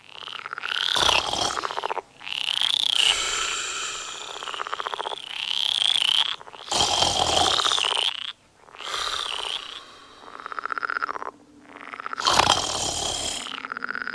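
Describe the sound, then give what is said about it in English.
A dense chorus of many frogs croaking at once, loud, their rasping calls overlapping in swelling waves with brief dips between. No voices are heard. “I struggled to stay awake as much as I could, to give her a chance to be deeply asleep before the frog concert began.”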